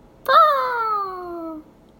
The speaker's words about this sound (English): And the hawk Ryla from the air gave a loud cry.